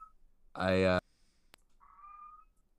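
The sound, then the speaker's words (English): A hungry cat lets out one loud meow lasting about half a second, followed by a sharp click and a fainter, thin tonal sound afterward. “As my cat is very hungry.”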